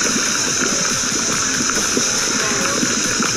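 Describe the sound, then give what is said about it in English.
Red-hot molten lava hitting ice gives a loud, steady hiss laced with bubbling, gurgling pops and sputters, continuous throughout, like water boiling violently. “Lava meeting ice.”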